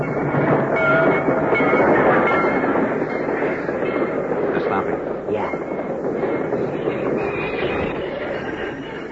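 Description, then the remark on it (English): A train grinds along and slows to a halt in a railway cut at night, stopped by a flare lit on the tracks; a steady loud rumble of wheels and carriages with faint metallic squeals, the noise easing slightly toward the end. “Because the flare which stopped the train has been planted at a carefully chosen point, the train is strung from one end of the cut to the other,”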